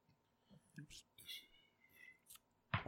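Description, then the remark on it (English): Dice clatter and bounce across a table in a few quick, light clicks, ending with a louder knock as a die bounces off the table onto the floor, while faint voices murmur in the background. “Oh, my dice bounced away.”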